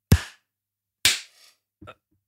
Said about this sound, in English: Hey, count us down for a clap. We don't need it, but, you know, let's do it anyway. 3, 2, 1.